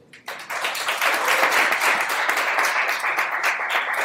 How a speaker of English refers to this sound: I would like to introduce the panelists. So first of all, a round of applause for the panelists who came.